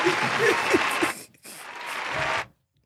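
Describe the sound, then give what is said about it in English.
A canned round of applause from a soundboard button plays loudly in two bursts of dense clapping, cut by a brief break, with faint voices mixed in near the start before it stops abruptly. “It's a round of applause, nigga.”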